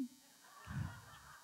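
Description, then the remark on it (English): A person's voice mimics a caged bird singing with a brief, nasal, honking squawk that swells and fades within about half a second, fairly quiet overall. “But they're sitting in a cage. They're just singing pretty songs. All right, I got to do it.”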